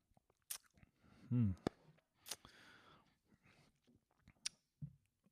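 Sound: sipping a rum cocktail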